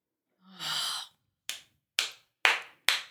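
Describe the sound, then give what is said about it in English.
A breathy exhale is followed by four sharp, crisp hand claps in a steady, evenly spaced rhythm, each clap fairly loud with a quick decay. “I'm going to applaud.”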